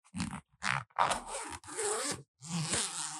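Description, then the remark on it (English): A heavy-duty zipper is pulled open and closed several times in quick, raspy strokes, each pass a loud, ratcheting buzz with short pauses between, no talking. “It's a heavy, it's a pretty heavy duty zipper. You can hear the quality with that.”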